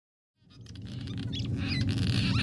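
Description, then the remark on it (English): A flurry of high, squeaky cliff swallow calls chatters continuously over a loud, steady low rumble, the chirps overlapping as many birds call at once. “So cliff swallows are these birds who often build their mud nests on the underside of highway overpasses and bridges.”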